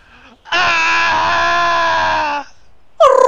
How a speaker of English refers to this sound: They hear a yell in the distance.